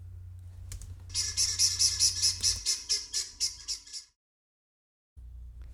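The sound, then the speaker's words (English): A bird named Larry squawks in a quick, rhythmic burst of about a dozen harsh, bright, loud calls over a low background rumble, before cutting to silence. “Larry lived happily, squawkily after.”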